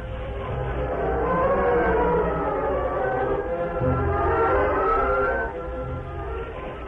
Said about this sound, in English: A few minutes later, Cliff and Gopher stood beside the moonlit tracks, watching the train disappear in the distance.